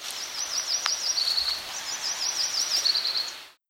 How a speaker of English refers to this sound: This was the Yellow-Rumped, also known as the Myrtle Warbler. In the background, there was an American Redstart.